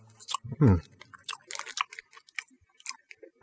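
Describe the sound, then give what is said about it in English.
Wet chewing of sour chewy candy, with irregular smacking and clicking mouth noises over a few seconds, plus a brief low hum from the chewer early on. “This is pretty good. This is a little sour chews.”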